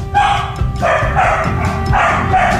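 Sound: dogs barking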